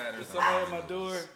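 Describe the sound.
Dogs barking at someone at the door in a short, loud burst of overlapping yaps and bow-wows, with voices audible underneath.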